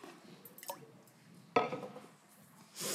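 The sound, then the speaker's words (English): Water is spilled onto a person with a sudden, fairly quiet splash and slosh midway through, trailing off into soft liquid rustling, after a few faint dripping and clinking sounds earlier. “I just spilled some water on myself.”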